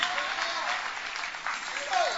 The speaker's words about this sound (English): If I'm preaching, clap your hands for Jesus. If I'm preaching, clap your hands for Jesus.